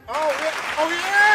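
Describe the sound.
A short burst of dense applause, steady and fairly loud, with whooping, cheering voices riding over the clapping throughout.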